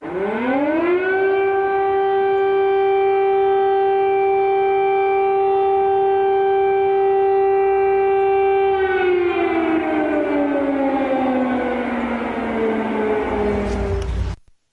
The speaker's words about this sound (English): But the news comes as sirens were heard outside, live outside Ukraine's capital city.